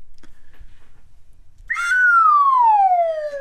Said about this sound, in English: Which is an absolute downslide on the slide whistle. I mean, that's about as downslide as you can get.